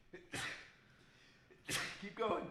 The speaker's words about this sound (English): I have a sneeze as well.